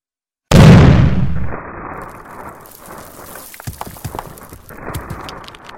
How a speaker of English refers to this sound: Was it forlorn hope, or perhaps a contingency I was unaware of, that allowed me to consider that with the solid walls of stone and cement between me and the furnace, I might survive the explosion?